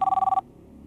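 A single short burst of a telephone ringing, a loud, rapidly trilling electronic ring that cuts off abruptly, leaving a quiet low hum.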